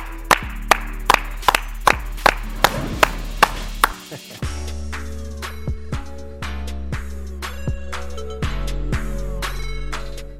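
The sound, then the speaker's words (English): Crisp handclaps beat out a steady, even rhythm over a bright, tonal musical backing, continuing for about ten seconds with no voices. “Clap it up.”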